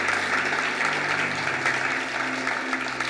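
An audience claps together in a steady, dense wash of applause that holds at an even loudness for the full stretch, with no voices rising above it.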